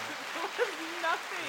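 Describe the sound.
A soft, steady patter of applause from an applause-button sound effect, crackling like light rain, runs through the whole moment while voices talk and exclaim over it.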